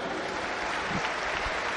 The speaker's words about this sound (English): A big round of applause again for Luke Cundall.